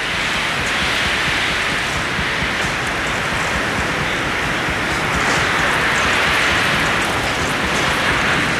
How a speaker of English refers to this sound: To listen and hear this wind. This is about 140 mile an hour winds we're experiencing. This is unbelievable.